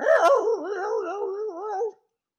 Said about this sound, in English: Oh, somebody's dog is hype right now, boy. I heard that dog.